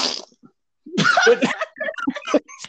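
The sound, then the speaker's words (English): A voice imitates fart sounds, a word spelled PFT: a burst of breathy, sputtering lip noise, then several shorter raspberry-like pops in quick, uneven succession. “Fart sounds.”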